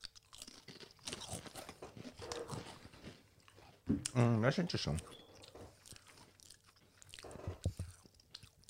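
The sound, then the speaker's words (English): Barbecue Shapes crackers being chewed, a rapid run of crisp, brittle crunches at a steady chewing rhythm, with a voice briefly speaking partway through. “These are barbecue shapes.”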